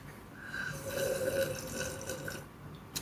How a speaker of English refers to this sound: Hold on, let me take a sip of cream soda.